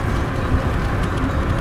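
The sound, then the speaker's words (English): A steady, loud low roar of road traffic and wind rushing past, heard from a car with the windows down as trucks go whizzing by, with no voices. “I got a puff guard on the old microphone here, but it's probably not gonna sound great when these fucking trucks go whizzing by.”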